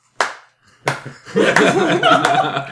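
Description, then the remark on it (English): Two sharp, loud hand claps ring out in a silent, packed movie theater, a beat apart, just as Leonardo DiCaprio's character dies on screen, and then a burst of voices and laughter-like sounds follows. “Yeah, I was the one clapping.”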